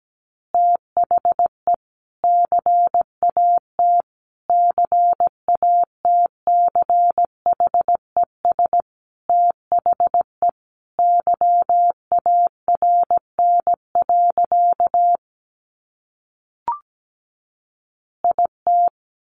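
Morse code at 17 words per minute: a steady mid-pitched tone keyed in rapid dots and dashes, with a pause near the end, a faint click, then a few more bursts.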